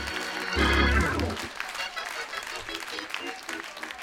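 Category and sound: crowd, audience clapping hands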